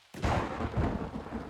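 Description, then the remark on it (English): A sudden crack of thunder breaks into a deep, rolling rumble over steady hissing rain, loud, with no voices. “Rain. I was done with the rain every day.”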